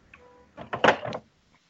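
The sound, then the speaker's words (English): A door opens or shuts in a short burst of clattering, rattling thuds lasting about half a second, preceded by a faint creak and followed by quiet. “Well, as long as your door doesn't fall.”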